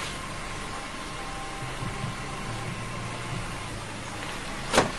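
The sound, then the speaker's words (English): A low motor whir hums steadily for a couple of seconds over a constant background hiss, ending in a short, sharp thunk as a car's power window finishes rolling down. “Hello, can you roll down your window? Your window. Your window.”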